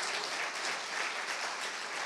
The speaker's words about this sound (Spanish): ¿Cuántos dan un aplauso por esta palabra en este día?